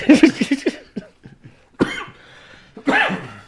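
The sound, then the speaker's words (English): A loud coughing fit: a quick cluster of harsh coughs, a pause with a small throat noise, then two more heavy coughs spaced apart, with no talking. “Sorry for coughing in my mouth.”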